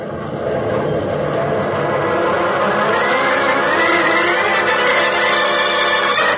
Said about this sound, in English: Opening the throttle, Batman sends his swift, oddly shaped plane zooming north